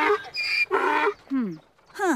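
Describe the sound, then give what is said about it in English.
A human voice imitates a donkey's braying scream: several loud, strained harmonic bursts, then falling, wavering cries that sweep down in pitch, with a brief rising shriek at the end. “Do you think the screams coming out of the donkey are not actually emanating from the donkey itself, but the 28 in the womb?”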